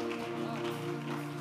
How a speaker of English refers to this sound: You are clapping.